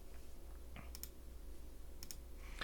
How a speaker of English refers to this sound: Clicking on the integer. Click, click, click.